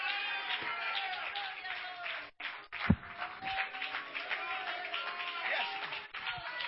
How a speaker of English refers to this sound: I wonder if I had somebody here today that can be grateful enough to stand to your feet and clap your hands.